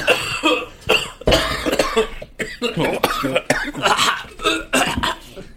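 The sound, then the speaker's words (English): A person coughs hard and repeatedly after ripping a dab, a string of harsh, raspy bursts coming in quick succession for several seconds, with brief gasping pauses between fits. “Ron Paul's cough drops.”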